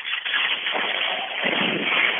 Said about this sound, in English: I'm wondering if you could just give us a good burst of the throttle on the Harley so we can hear what it sounds like. Okay. Just a second, and we will put the phone by the engine.